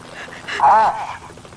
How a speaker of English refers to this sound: Listen. Listen to that. Helicopter. 10 to 1, it's the police.